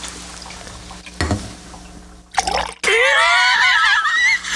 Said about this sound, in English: Stop pouring your water directly into your mouth